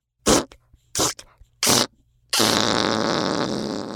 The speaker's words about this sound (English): He let out some farts, sounding like a deflating balloon. Oh, dear! Ew! It's so stinky!